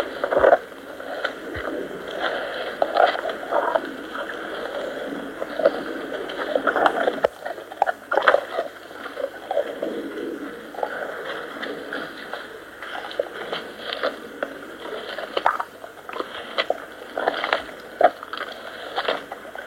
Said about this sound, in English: Then you'll hear the dogs chewing on the big soup bone. The sounds of Frey and Freya chewing on big soup bone.